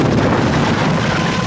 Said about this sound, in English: A fuel tank broke and began to leak. The gasoline caught fire and the plane exploded.